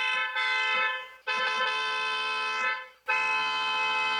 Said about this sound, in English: Mr. Rogers pushed hard on the car's horn.